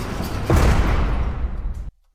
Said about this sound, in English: No, they're that was loud. I'm sorry. There's the cell door slamming behind him.